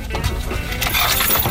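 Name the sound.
keys jangling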